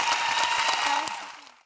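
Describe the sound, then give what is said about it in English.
A crowd applauds two speakers who have just been thanked for being there, with dense, steady clapping that holds at an even level, then fades and cuts off after under two seconds. “And yeah, round of applause.”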